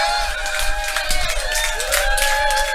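An audience erupts in loud, sustained cheering, a dense roar of shouting voices with high whistles cutting through, holding steady for the whole few seconds.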